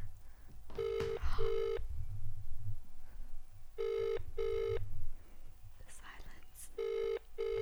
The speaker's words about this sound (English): Hold on, we'll try again instantly. See. Oh, it's ringing this time.